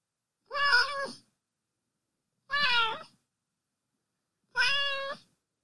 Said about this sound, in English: I should get a cat of my own. I think more meows are in order. Just say meow for more.